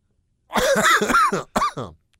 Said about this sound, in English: I'm just coughing.